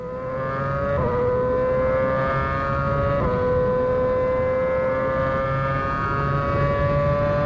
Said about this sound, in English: Now that is the noise that Max Verstappen's car made as he officially opened Zandvoort down into Tarzan, the first corner.